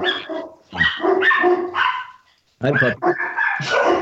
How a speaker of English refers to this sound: Somebody's at our door. Three rescue dogs. Hey, Shazam, stop it. Come on, Kurtz, quiet.